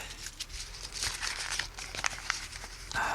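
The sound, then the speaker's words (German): Crisp crinkling and rustling of a white crumpled paper ball, a small paper boat, being handled and pulled open, with scattered sharp crackles over a few seconds and no one speaking. “Meinst du das weiße Papierknäuel?”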